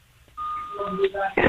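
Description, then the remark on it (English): A steady high electronic tone starts, then overlapping lower beeps at several pitches join it. The sound stays fairly loud and ends in a short noisy burst. “Is that what the beeping is?”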